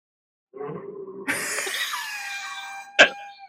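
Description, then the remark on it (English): A man lets out a shrill, wavering, involuntary horse-like whinny in reaction to someone else's cough, a Tourette's-like response, with a sharp burst near the end. The sounds are fairly loud, with no talking. “We think it's he reacts to somebody else's cough by doing a horse whinny, an involuntary horse whinny.”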